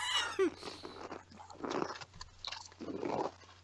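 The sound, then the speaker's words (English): Wet, crunchy chewing and munching sounds of someone eating berries and cream come in irregular bursts, with a steady low hum underneath and no talking. “Every crunch, bruh. You been crunching too. I'm eating berries.”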